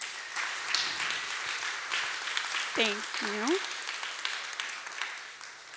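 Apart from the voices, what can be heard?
audience round of applause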